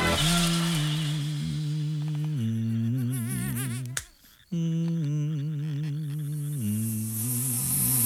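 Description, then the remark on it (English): A loud swarm of bees drones continuously with a wavering pitch, cut by one sharp slap as a man swats a bee, a brief near-silence, then the buzzing surges back just as loud as the swarm returns. No one speaks. “Yeah, and the bees are marvellous as well, aren't they? I love the way the guy idly swats the bee and then gets his comeuppance when the swarm comes back and does him in.”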